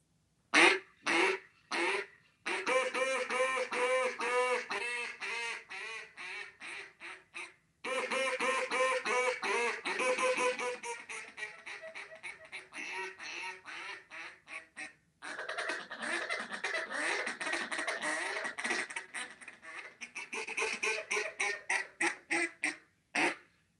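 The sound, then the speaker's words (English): An Archangel duck call blown in a mallard hen imitation: a few sharp single quacks, then long rapid runs of raspy quacks descending in pitch, repeated in several loud sequences with no talking. “It's a great duck call.”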